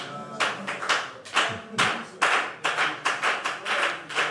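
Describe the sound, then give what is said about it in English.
A crowd of people clapping together, dense and loud, the applause pulsing in a steady rhythm of strong beats roughly twice a second, with no voices over it. “Give him the best of clap offer.”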